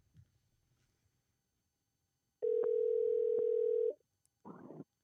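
A phone call ringing out: one loud, steady mid-pitched ringback tone held for about a second and a half, then a brief noisy burst after a short pause. No one speaks.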